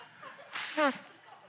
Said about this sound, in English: I've got to blow my nose. I forgot. How do I remember that? About this time into every sermon. I only have to blow them once.